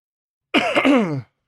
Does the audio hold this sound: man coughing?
yes